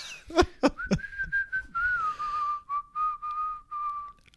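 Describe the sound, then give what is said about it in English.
Someone whistles a short, wavering tune, holding long sliding notes and then a few shorter phrases, with a couple of sharp taps near the start. “I was about to whistle.”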